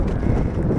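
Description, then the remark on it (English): Strong wind buffets the microphone, making a loud, steady low roar and rumble that fills the whole short moment with no pauses and no voices. “God, the wind is brutal.”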